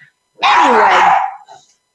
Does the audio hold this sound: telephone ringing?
no